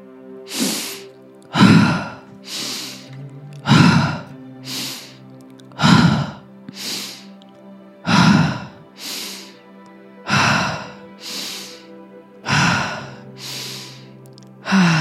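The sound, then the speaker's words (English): Deep, audible breaths in and out repeat in a steady rhythm about every two seconds, fairly loud, over a soft sustained tonal hum in the background. “Just keep going. Keep breathing.”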